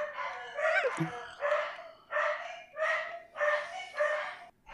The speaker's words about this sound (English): Sorry, our dogs. My wife just got home. My dogs are going crazy.